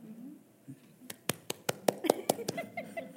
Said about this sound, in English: You just clap, oh, you know.